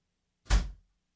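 A single heavy door thud as someone comes inside, short, with a deep low thump and a quick fading rattle, heard on its own with no talking.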